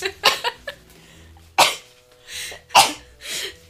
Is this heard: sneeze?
yes